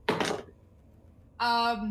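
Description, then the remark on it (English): A short burst of dice clattering and rattling across a hard tabletop during a tabletop role-playing game, the roll coming up 8, followed by a pause and then a voice starting to speak. “That's an 8 on the dice, which will be like a 19 in total, which like I think will hit, but like, is that a good enough strategy for me?”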